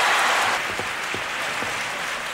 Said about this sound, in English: Thank you very much, members of the Academy, and thank all of you who applauded.